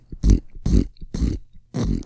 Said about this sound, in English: Yes, it's the pig. His name is Pete. He's so fat because he eats a lot.